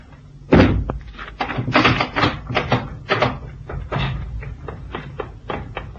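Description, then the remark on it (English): A cabin door handle is tried and the door opened: a heavy thud, then a run of rattling, knocking clatters of the handle and wood over several seconds, with no voices. “And now's my chance to try the door handle.”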